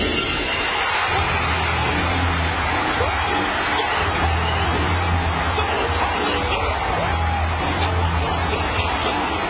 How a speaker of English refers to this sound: Stone Cold Steve Austin, that glass shattering hits. Listen to this crowd go crazy.